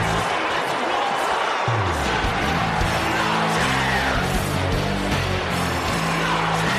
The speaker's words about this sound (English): You can hear people booing. And you can see it in their face, like, I'm seeing the video. He just came out and put his arms out, and that's why people start cheering.